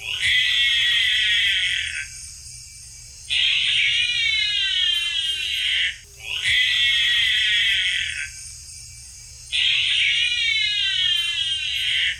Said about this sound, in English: That is called a bear cat, and it's not related at all to bears or cats. It's also known as the binturong, and is native to South and Southeast Asia.